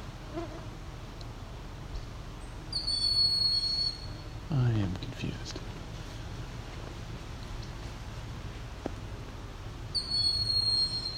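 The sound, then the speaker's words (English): In a forest, a bird gives short bursts of shrill, high-pitched alarm calls, one early and another at the end, over a steady low hum with a brief rising whine between them. “No, it is a bird or something, I guess. Making alarm call.”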